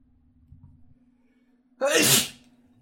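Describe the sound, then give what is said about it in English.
A single loud sneeze bursts out suddenly after a quiet stretch with a faint steady hum, its sharp airy blast lasting about half a second. “Bless you. Bless you.”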